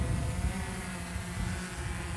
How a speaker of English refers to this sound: Now we're raising the legs and we're gonna take the drone up in the air. In a position where I don't have the sun so much in my eyes. And here we go.